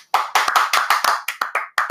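A single pair of hands clapping in a quick, slightly uneven rhythm, about ten sharp claps in under two seconds, fairly loud with no voices.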